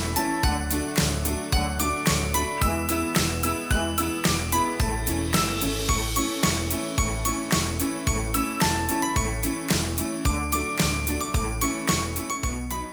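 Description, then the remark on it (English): Upbeat Christmas music with bells jingling over a steady, bouncy bass beat, playing loud and full throughout with no voices. “We'll see you after the Christmas music.”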